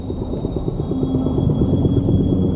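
Busy coral reef soundscape underwater: a dense, steady bed of low rumbling and crackle with rapid rhythmic pulses and occasional drawn-out tonal calls, no voices.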